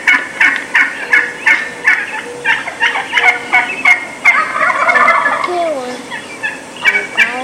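Several wild turkey hens give rapid, repeated assembly yelps to gather the flock, overlapping one another in quick rhythmic bursts, clear, with a brief rising whistle-like call near the end.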